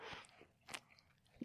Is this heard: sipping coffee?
yes